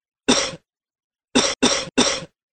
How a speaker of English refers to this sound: All right, cough, please. Cough again.